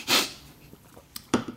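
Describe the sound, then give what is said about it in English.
A loud, sharp cough bursts out at the start, followed about a second later by a quick pair of shorter, rougher coughs. No one speaks. “Oh, the cough.”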